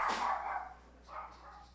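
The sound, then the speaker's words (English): A dog barks sharply a couple of times, a loud burst followed by a softer second bark, heard alone without talking. “Dog is going crazy.”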